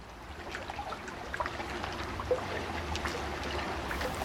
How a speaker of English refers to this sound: Open water? Dude, we're in a rowboat, in a pond. And the pond is between a shopping mall and an apartment complex.